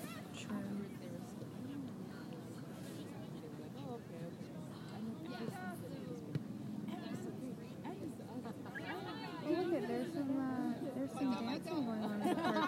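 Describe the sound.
Spectators at a soccer game cheer a player in a constant crowd babble, with individual raised voices rising out of the din and growing louder and more excited toward the end.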